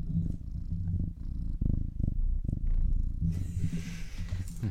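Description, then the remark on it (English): Demetrius, a cat, purrs steadily, a low rumbling vibration with rhythmic pulses, and a soft breathy hiss joins in near the end. No one speaks. “I want to see if we can capture Demetrius's purring.”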